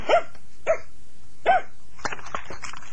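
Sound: dogs barking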